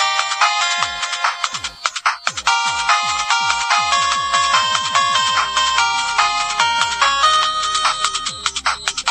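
A bright, melodic phone ringtone plays on its own, a quick electronic tune with rapid repeating notes and a busy bass line underneath, loud and continuous throughout with no talking.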